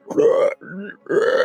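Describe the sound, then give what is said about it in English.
A voice imitates the character Blep croaking three times in quick succession: two loud, rough guttural croaks with a softer, lower one between them, with no other talk. “Maybe under the stairs, these like metal stairs that go up to the second floor, and he croaks at you a few times.”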